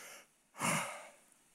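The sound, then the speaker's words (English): A person lets out a single exaggerated, breathy yawn, a loud open-mouthed exhale that swells quickly and trails off, with no talking, depicting Jesus yawning in the boat during the storm. “He yawns. Guaranteed he yawns.”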